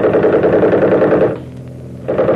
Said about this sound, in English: The minute I open up with the rifle, smack them with the machine gun.